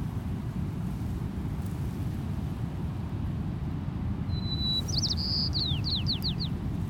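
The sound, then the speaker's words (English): A white-crowned sparrow on coastal dunes sings once near the end: a clear opening whistle, then buzzy notes and quick descending slurs, over a steady roar of wind and surf. “Here's our first bird species of the day, a white-crowned sparrow.”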